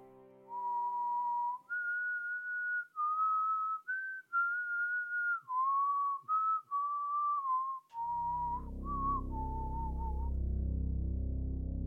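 A woman whistles the same strange tune over and over, long, steady notes that step up and down, clear, before low rumbling noise swells in near the end.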